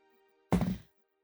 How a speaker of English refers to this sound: Okay. I'm gonna roll with my real dice.